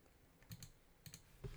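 A few quick keystrokes clatter on a computer keyboard as someone looks up the 1971 film The Big Doll House, coming in short pairs with brief pauses between them, fairly quiet.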